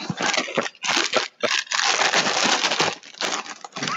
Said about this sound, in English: I'm not sure you can hear this. I'll put it up toward the mic, but I'm going to open up the box of Lucky Charms inspired Lucky Charms.